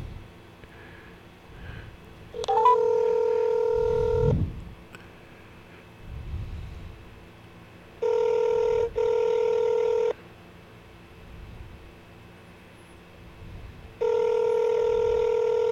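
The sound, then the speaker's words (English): A call placed from a phone rings out with three steady electronic ringback tones, each about two seconds long and separated by pauses, fairly loud, with soft rumbling handling noise between them and no voices. “I'm going to call it right now from my phone and see what happens.”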